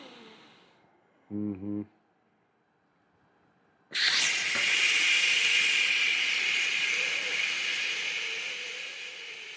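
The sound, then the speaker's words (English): A brief low voiced hum, a pause, then a strong steady rush of breathy air as a balloon is blown up, hissing loudly for about six seconds and easing slightly toward the end. “You take a balloon, you go... You blow it up.”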